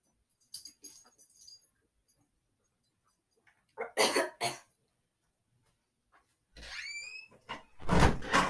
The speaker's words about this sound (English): I'm gonna cough. I'm gonna actually just cough. Oh God. I can't breathe.